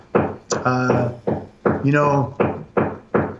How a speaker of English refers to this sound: Can you hear that hammering? Yeah, yeah, I was, yeah. Of course it just starts as we're ending.